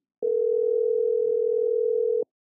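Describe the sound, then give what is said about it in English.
A steady telephone dial tone of an outgoing call holds one unbroken mid-pitched note for about two seconds, then cuts off abruptly. No voices are heard. “I'm calling her because I know she out on a date.”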